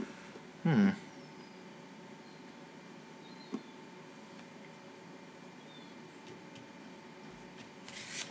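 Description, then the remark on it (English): Sharp clicking from a phone: one loud click near the start and a softer one a few seconds later, then a faint rustle, all over quiet hiss with no talking. “Is that the clicking noise of your phone?”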